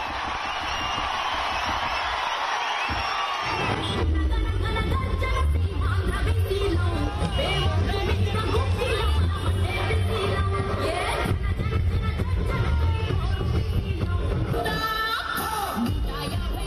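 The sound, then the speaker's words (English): A dense, continuous roar of a large crowd at a political roadshow in Andhra Pradesh, loud and unbroken, with a bright hiss of cheering early on giving way to heavier, rumbling crowd noise. “looking at these crowds, am I talking to the next Chief Minister of Andhra Pradesh?”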